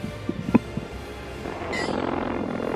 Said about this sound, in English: That's the sound of his bare ass cheeks on leather.